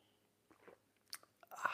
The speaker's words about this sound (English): It's called the simultaneous sip, and I know that people all over the world are scurrying. Scurrying like happy little chipmunks to grab their vessels to join me now in the simultaneous sip. Go.